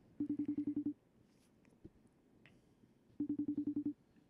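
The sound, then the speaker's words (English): An outgoing call to a guest whose phone is on do-not-disturb rings on the line: two short bursts of rapidly pulsed, low electronic tone, about two seconds apart, fairly loud and clear, with no voices. “His phone is on D&D, so call twice.”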